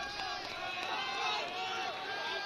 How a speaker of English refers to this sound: You can hear the crowd. You can hear the Omaha dugout as the rain continues to come down, starting to get harder here at Tal Anderson Field.